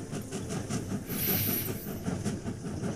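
Steady rumbling of a moving train from inside a carriage, with low rhythmic clatter and a brief hissing burst partway through; no one speaks.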